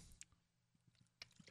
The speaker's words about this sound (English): Have a sip.